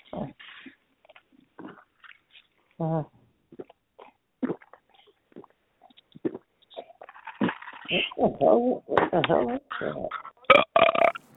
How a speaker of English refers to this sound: CJ opened her mouth to burp. And a burp came out.